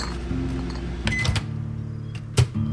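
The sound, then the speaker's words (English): A microwave oven heating a couple of pot pies hums steadily, with a few sharp clicks and knocks, one brief high beep, and a louder thump near the end. “I heated up a couple of pot pies in the microwave”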